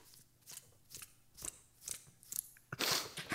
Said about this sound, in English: Sound like a couple of coins. Why does it sound like a couple of coins?